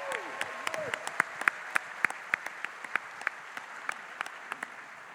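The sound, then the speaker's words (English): An audience at a live show applauds steadily for about five seconds as a man walks into the audience with a microphone. The clapping is a dense wash with individual sharp claps standing out at moderate volume. “Round of applause, he makes his journey to you.”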